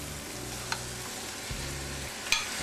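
Steady, crackling sizzle of cut-up chicken breast pieces sauteing in a pan, broken by a few sharp clinks and scrapes as they're stirred so they separate. Low hum underneath, no talking.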